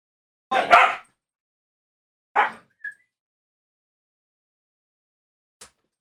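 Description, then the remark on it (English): Dogs fighting: a rough, scuffling bark, then a second sharp bark and a brief high yip, followed by quiet and a faint click. There is no talking. “Sorry, my dogs are fighting.”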